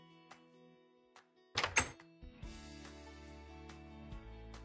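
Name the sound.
door being opened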